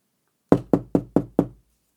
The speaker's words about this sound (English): Oh, sorry everybody, it sounds like someone's at the door. Let me go check it out.